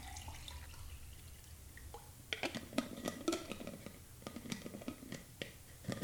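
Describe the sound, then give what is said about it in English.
Hydrogen water is poured into a container, a splashy, trickling sound with light clinks and drips that begins a couple of seconds in after a quiet, hushed start. “Let me pour this.”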